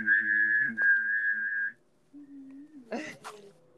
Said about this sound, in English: Can you whistle and hum at the same time so it goes like this?